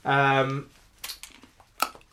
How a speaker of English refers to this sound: Me crunching a mint.